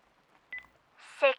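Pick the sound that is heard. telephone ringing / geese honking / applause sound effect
telephone ringing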